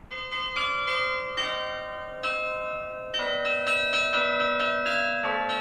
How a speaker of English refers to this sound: Mixing church bells and hip-hop might sound crazy or gimmicky, but it's kind of a throwback to the old days of bells and bell ringers